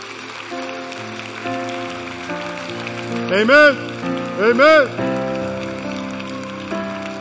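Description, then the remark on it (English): An audience applauds steadily, a dense, even patter of clapping that runs the whole time while a voice calls out twice over it. “Let's give these people a big hand.”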